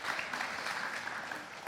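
An audience applauds with a steady, dense wash of many hands clapping, sustained at an even level throughout without pauses or voices standing out.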